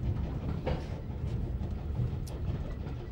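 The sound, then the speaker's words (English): A single-coach early-morning train for railway personnel rolls steadily along the rails, a continuous low rumble with a couple of faint clicks from the track. No one speaks. “The particular train on which we're travelling only needs to have one coach because it's the early morning taxi for railway personnel.”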